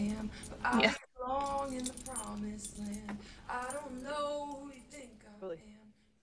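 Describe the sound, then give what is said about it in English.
Car keys jangle in a short, bright metallic burst lasting about a second, then a person starts talking with the jingling gone. “Some keys, some car keys, ASMR.”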